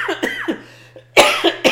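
A man coughs in a rough, repeated fit because of the boxes: a couple of dry hacks, a short pause, then a louder cluster of harsh coughs over a faint steady hum.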